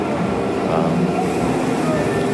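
A commuter train rumbles into a station on a Friday, its steady, loud mechanical roar and rattling wheels filling the space with no break.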